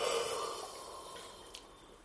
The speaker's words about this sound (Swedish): Okej, det var mitt en gäspning.